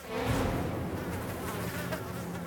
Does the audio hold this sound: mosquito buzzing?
yes